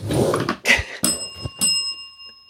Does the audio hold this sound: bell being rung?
yes